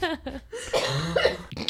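A close, fairly loud fit of coughing: several harsh, raspy coughs in quick succession, running into one longer wheezy stretch before a couple more short bursts. No one speaks.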